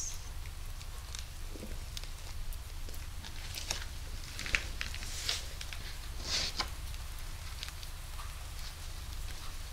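Steady, soft rain pattering down, with scattered sharper drips ticking over a constant low rumble. No voices, just the continuous hiss of falling rain.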